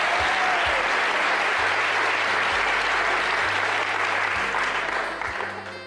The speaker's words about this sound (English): How many, quickly, how many non-smokers are here tonight? Non-smokers, by round of applause. Let's hear non-smokers.